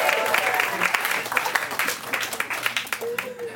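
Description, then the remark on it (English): An audience claps steadily for a few seconds, a dense, crackling patter of many hands with no clear rhythm, with faint voices calling out beneath the applause; the clapping answers the speaker's call to clap if they want to share the responsibilities. “Who wants to, let me clap if you want to share the responsibilities.”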